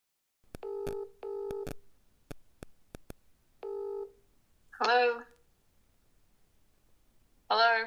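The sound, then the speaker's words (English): Sharp keypad clicks punctuate a phone line's buzzy ringback tones, two short rings then another, before a voice briefly answers and speaks over the line. “Can I just say it would be harder to get my mother to answer the phone than to hang up on me.”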